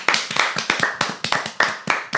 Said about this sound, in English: Phenomenal, phenomenal, phenomenal show. Cool. Round of applause